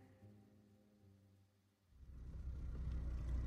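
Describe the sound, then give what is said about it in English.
A car engine idles with a steady low hum, then revs up and builds into a loud, rumbling drive as the vehicle pulls away and gathers speed. No one speaks. “I was headed to her house anyway, so I just got on the road and started driving.”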